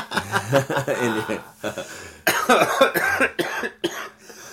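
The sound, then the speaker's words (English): A loud run of harsh coughs comes in uneven bursts, mixed with breathy chuckling and wheezy gasps between them, like someone laughing their way into a coughing fit. “oops, sorry, I kicked off a coughing fit.”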